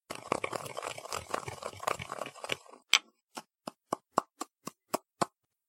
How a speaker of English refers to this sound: And, over here, a box of ordinary cough drops. Sugar, cough drops, and for goodness sakes. Please, Inspector, just watch. I will now grind up the cough drops.